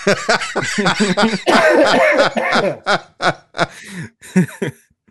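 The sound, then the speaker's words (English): A loud coughing fit: rapid hacking bursts run together, mixed with breathy, laugh-like sounds, then break into several separate coughs that trail off. “Yeah, the coughing fit too.”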